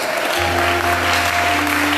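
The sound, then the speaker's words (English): An audience at a church service claps for themselves at the preacher's call, in a dense, steady burst of applause that fills the whole two seconds, with a few sustained low instrument tones humming underneath. “Why don't you clap for yourself?”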